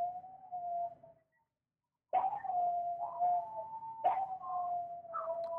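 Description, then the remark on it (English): Long, sustained howls from dogs or coyotes in Austin, one drawn-out cry, a brief silence, then two more wavering howls rising sharply and sliding down. Moderately loud, with no one talking. “You guys hear the dogs howling? I wasn't sure if that was coyote?”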